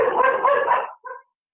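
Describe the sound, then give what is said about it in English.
A loud guard dog bark, from one of the guard dogs hired for the NFL, that trails into a drawn-out growl, followed by a shorter yelp and the start of another bark, with no talking. “A guard dog.”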